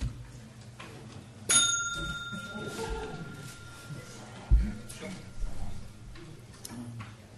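A small bell is struck once to start a session, ringing out clearly with a bright, sustained tone that slowly fades over a few seconds, while many people murmur and shuffle in the background.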